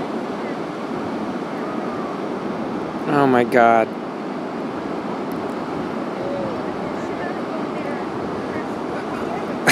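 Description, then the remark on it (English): Steady roar of ocean surf and wind runs throughout, with a brief, loud, startled voice of a little kid who has just fallen into the ocean cutting through about a third of the way in before the waves carry on alone. “This little kid just fell into the ocean. Can you hear him?”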